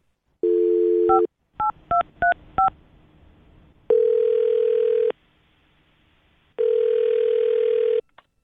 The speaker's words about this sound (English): Well, I'll dial his phone number right now and see if we can figure out why he just stopped talking to you. Okay, here we go.